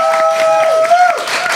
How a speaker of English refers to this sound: Ladies and gentlemen, give a round of applause for Team Hawk!